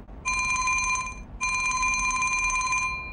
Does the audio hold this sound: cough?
no